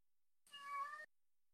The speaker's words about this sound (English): Is that a cat? That's Sir Simon Garfunkel. Oh, nice. He has never, ever wanted anything to do with me. And for whatever reason tonight, he wants to be pounding on the toy room door.